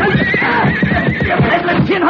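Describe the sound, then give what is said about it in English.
A horse whinnies loudly, a shrill, wavering neigh that rises and falls for about two seconds, with a rough, busy background underneath. “You will not stay on that horse, deputy.”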